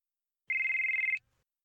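A phone rings for an incoming call with a single electronic tone, a steady high-pitched trill lasting under a second and pulsing rapidly, loud and alone with no voices.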